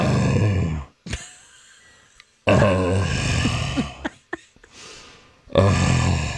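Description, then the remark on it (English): Several loud, rough, guttural vocal grunts resembling snores, a verbal pause isolated from a song, each a few seconds long with brief silent gaps between them, with no other sounds. “Sounded like you were listening to someone getting a sleep apnea study.”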